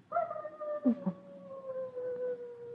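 A fox barks up on a ridge above a valley during the mating season, one long drawn-out cry that slowly falls in pitch, broken by a couple of short lower yelps midway, with no voices.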